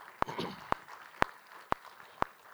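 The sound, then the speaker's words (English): Five sharp claps from an audience clapping for God during a Christian talk land in a steady, even rhythm about half a second apart, crisp, over a faint murmur of background noise. “If you're going to clap, clap louder, because that's for God.”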